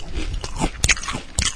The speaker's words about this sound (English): The initial bite.